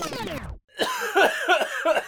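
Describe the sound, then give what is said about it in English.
A short falling tone cuts out, then a person coughs several times in quick succession, fairly loud, each rough burst following the last. “Right, well, seeing as he's having a cough, I'll clear my throat as well and edit it out.”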